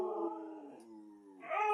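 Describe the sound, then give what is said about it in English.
A person imitates a dog's howl: a sustained, wavering tone that dips and then rises in pitch, sounding convincingly canine, with no other voices. “That was actually me, not the dog.”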